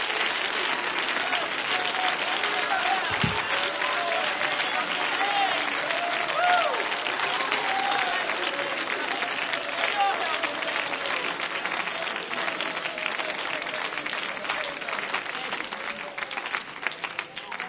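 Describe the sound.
An audience in a church claps steadily for the whole stretch, a dense, even wash of many hands at a loud, constant level, with faint voices and a brief low thump partway through.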